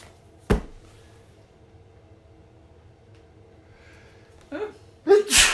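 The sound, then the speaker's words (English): A loud sneeze comes near the end, preceded by a short sharp intake of breath; a brief thump or click sounds earlier over a low steady background hum. “Bless you. Pardon me.”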